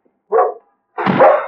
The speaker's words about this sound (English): No, Skipper, be quiet. He knows. Poor old dog. Very soon he will die.